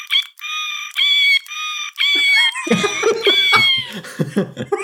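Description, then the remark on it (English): Novelty quiz buzzers: one plays a cat meow several times in quick succession, each meow short and loud with a thin electronic tone. Lower, rougher owl sounds from a second buzzer join in during the second half. “Well, that's clearly a kitty. That's a kitty. It's a kitty and an owl.”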